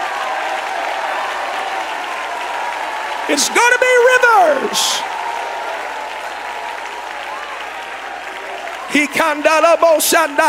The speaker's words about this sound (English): I want you to clap your hands and shout to the Lord.